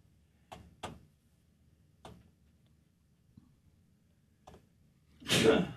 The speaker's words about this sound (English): Bless you.